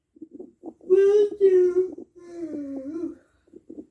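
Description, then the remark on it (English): A young daughter yawns aloud, a drawn-out voiced moan that swells in two strong pushes and then trails off into a lower, wavering tone, with brief faint vocal sounds before and after. “My daughter's yawning.”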